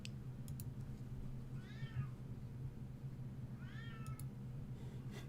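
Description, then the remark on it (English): A cat meows twice, two rising-and-falling calls a couple of seconds apart, over a steady low hum and a few sharp clicks like keyboard taps. “As the cat is meowing in the background.”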